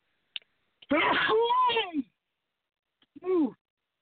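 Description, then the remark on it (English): A loud sneeze bursts out with a harsh, noisy onset and a drawn-out voiced tail, followed after a pause by a short, higher-pitched vocal sound. “Gesundheit.”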